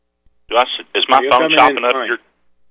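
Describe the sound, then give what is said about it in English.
A voice over a narrow, tinny phone line, cutting out in brief dropouts so the speech comes through choppy and broken up, fairly loud. “Okay, you're chopping up a little bit there”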